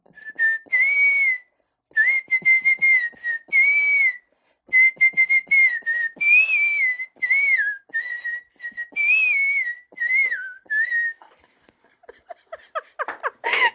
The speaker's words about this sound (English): we've heard you're a whistling enthusiast. What is your favorite song to whistle and can we hear it? Oh, wow. I don't have a favorite song. I'm always whistling. I guess we could do...